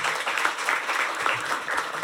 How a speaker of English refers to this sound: Well, thank you. Let's give a round of applause to...